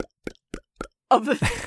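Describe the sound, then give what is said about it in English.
A voice imitates bubbles blooping up through mud as someone lying face first in the mud breathes into it: four short, soft, evenly spaced plops, then a louder, longer gurgling burble to finish. “of bubbles as she breathes into it.”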